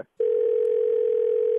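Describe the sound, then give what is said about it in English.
A steady, unbroken telephone dial tone hums as a call is patched through, after a brief moment of silence, holding one low pitch at an even, moderate level with no voices. “Okay, we'll patch you through. Hold on.”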